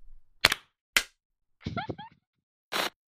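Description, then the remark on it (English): Two sharp hand claps in quick succession, then a short spoken count of one, two, three, followed by one more crisp, slightly longer clap on the beat, clapped in place of saying four. “I'm going to count to three, and instead of saying four, we're going to clap.”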